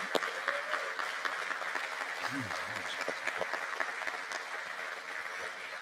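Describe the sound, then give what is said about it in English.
A large church audience claps steadily and loudly in praise to God, with scattered cheers and shouted voices rising through the dense applause for several seconds. “Would you just give him a clap of praise? Let's just shout and just celebrate.”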